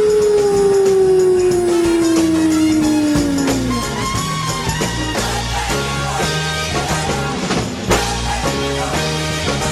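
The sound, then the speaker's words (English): A single long coyote howl, the intro to the Late Night Fright show on WKMF Cozy Corner Public Radio, glides slowly downward for about four seconds over busy background music, then fades out as the music carries on alone. “I am the Coyote.”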